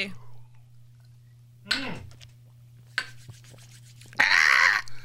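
People in a studio knock back shots of liquor: a few short clinks and scrapes of small shot glasses, then a loud, breathy exhale, with a steady low hum underneath.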